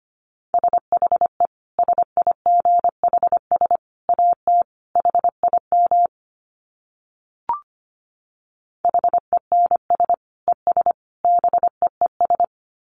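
Morse code at 25 words per minute: a steady mid-pitched tone keyed rapidly into dots and dashes, in two runs separated by a pause with one brief click in between.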